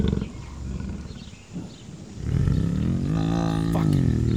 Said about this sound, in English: That was a goddamn jaguar. And it looks like it tore off for now. Oh, Jesus Christ. That thing was big. That thing was big. That could eat me like a goddamn chicken nugget.